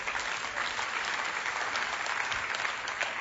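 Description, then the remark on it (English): An audience breaks into sustained clapping, a dense, steady wash of many hands striking together with no pauses, fairly loud throughout and with no voices standing out. “I hope those weren't the people who like have no idea what those things are clapping.”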